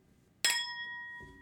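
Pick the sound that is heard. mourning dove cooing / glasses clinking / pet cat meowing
glasses clinking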